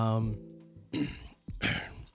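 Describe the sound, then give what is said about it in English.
Someone clears their throat twice, two rough, gravelly bursts about half a second apart, following a short voiced hum at the start. “I need a cough drop for that one.”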